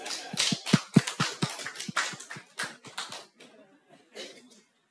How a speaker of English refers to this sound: Clap for him.